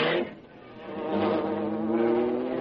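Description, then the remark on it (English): The Black Beauty, the Green Hornet's car, drives off with a humming engine giving a steady, buzzing drone with layered harmonics. It dips briefly at the start, then swells and holds while its pitch slowly glides upward. No voices. “Then he heard the well-known sound of the Black Beauty.”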